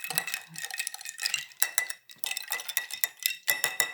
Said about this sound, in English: Mix it going in. Yep. It's got that lime green. Yep. Yep. Go ahead and stir. Ooh.